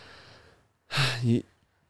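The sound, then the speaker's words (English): A single sharp, breathy gasp rises into a brief voiced note, loud, lasting about half a second before fading to quiet. “I was suspended. Gasp.”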